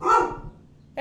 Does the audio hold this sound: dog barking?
yes